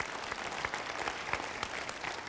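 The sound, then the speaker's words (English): A crowd applauds with steady, dense clapping that holds an even level throughout, a bright crackle of many hands with no voices standing out. “You can clap for that.”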